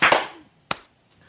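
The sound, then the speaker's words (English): A group of people clap once together on a count of "one, two, three", their hands landing slightly out of sync in a loud, smeared burst, followed a moment later by a single sharp straggling clap and a faint trailing tap. “But then he said one, two, three, clap.”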